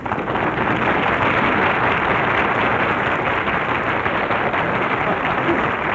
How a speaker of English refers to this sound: Gee, he got more applause than if he were here.